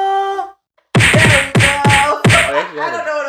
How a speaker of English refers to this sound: It wasn't a drum roll though. It's gunshots.